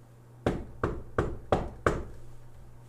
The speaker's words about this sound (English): Then he'll go back to the first one and knock on the door.